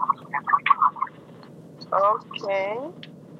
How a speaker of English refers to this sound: Because if it's on the loudspeaker, I can hear the echo. It's making noise on me now. Even now, I can hear noise.